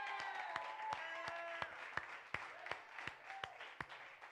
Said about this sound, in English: I'm sitting there dancing, thinking of, clap your hands, all you people. Shout unto God with a voice of triumph. Amen.